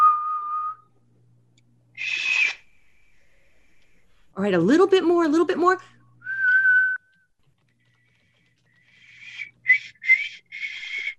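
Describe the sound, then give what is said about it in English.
A small finger-hole whistle blown by a female player with all her fingers over the holes, in short tonal bursts, some steady and some wavering, with brief pauses between them and a person speaking in the middle. “So I've talked to her about putting all of her fingers on, and don't blow too hard. The whistle works with you.”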